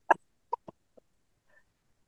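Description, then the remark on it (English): A quick run of four harsh coughs, the first loudest and each one weaker, followed by a faint, thin wheeze, with no talking. “he looks at you and just openly coughs in your face.”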